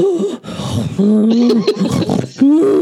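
A loud, drawn-out yawn with a groaning voice, its pitch wavering and sliding through a few long breaths over about three seconds.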